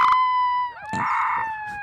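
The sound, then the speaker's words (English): A wolf puppy howls in a high, wavering tone, holding a long note that dips and then rises again, with a few short yips and breaths mixed in. “Wolf puppy. It is a wolf puppy.”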